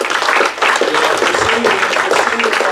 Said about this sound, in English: Blueberry, give a round of applause for Blueberry.